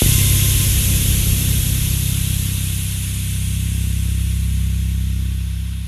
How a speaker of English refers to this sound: A loud hiss startled me out of my thoughts. It must have gotten cold outside because the steam from the boiler was bumping around through the pipes. I guess there's one sound no building can avoid, especially not old ones.